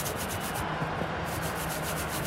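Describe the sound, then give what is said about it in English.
Hands rub back and forth over crumbly red clay soil of the cricket pitch at the Wankhede stadium in Mumbai, a steady gritty scraping made of quick, evenly repeated strokes with a hissy top. No one speaks. “Hang on. I'll just rub my hands on it.”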